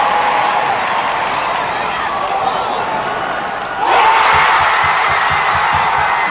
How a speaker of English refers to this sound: That is when she broke the NCAA record. I know you can't see the shot, but you can hear the crowd react.